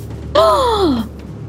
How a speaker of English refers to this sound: And, sorry, I was thrown by the very dramatic gasp then.